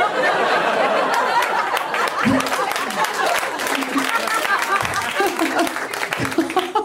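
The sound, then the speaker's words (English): A comedy show crowd applauds steadily with dense, rapid clapping that fills the whole stretch, mixed with scattered cheers, laughter and excited voices rising over the noise, giving a round of applause for a birthday girl. “Well, round of applause for that birthday girl.”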